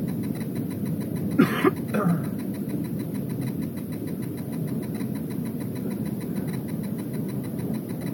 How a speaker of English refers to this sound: You know how we're saying like the old track has been amazing and flowing right through and blah blah blah blah blah. That's the traffic this morning.